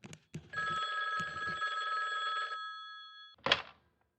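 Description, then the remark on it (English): An old-fashioned office telephone bell rings at a desk in 1981, a single sustained metallic trill lasting about two seconds. A few soft knocks come before it and a sharp clatter after. Fairly loud, with no talking. “And Cindy appeared visibly shaken, and then the phone rang again.”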